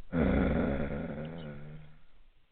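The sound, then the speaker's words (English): A man growls like a dog, a loud, rough guttural rumble sustained for about two seconds before trailing off, with no speech. “This nigga growling and shit, man.”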